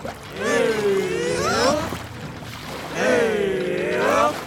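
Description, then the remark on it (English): Two long, creaking strokes of oars as Guy Fawkes rows a boat carrying gunpowder across a river, each a drawn-out wooden groan over a soft watery wash, with a brief quiet gap between them, fairly loud. “Guy Fawkes brought the gunpowder by rowing it across the river.”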